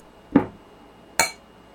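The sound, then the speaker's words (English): A dull slap of a high five is followed about a second later by a single bright clink of glasses touching in a toast, ringing briefly before fading into quiet. “High five. Cheers.”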